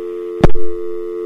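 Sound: telephone dial tone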